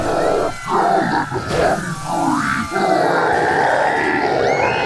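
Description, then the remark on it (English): A large, energized crowd in Iowa cheers and roars continuously for several seconds, loud, with rising and falling swells of shouting and deep guttural yells mixed into the din. “Wow, it sounds like people are really energized.”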